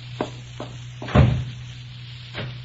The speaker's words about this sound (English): Oh, excuse me for banging the door.